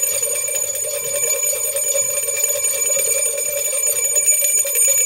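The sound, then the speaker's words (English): Bells ring continuously and loudly on a Friday for the whole stretch, a bright metallic clangor with rapid repeated strikes blending into a sustained shimmering tone. No voices are heard. “We ring the bells on a Friday in honor of the IU women's basketball team who beat the number 5 team in the country, Iowa, last night before a record crowd in Bloomington at Simon Scott Assembly Hall.”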